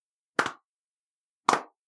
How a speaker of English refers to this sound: Oh, were you going to... Should we do a slow clap? Let's do a slow clap. Ready?